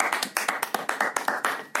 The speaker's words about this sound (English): Delayed applause. Unnecessary.